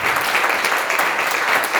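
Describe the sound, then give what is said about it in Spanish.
A church audience claps steadily to welcome a visitor, a dense, continuous patter of many hands at a strong, even level with no voices standing out. “Denle un aplauso a la visita.”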